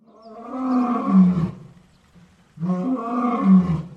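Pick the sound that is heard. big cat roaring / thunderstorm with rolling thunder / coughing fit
big cat roaring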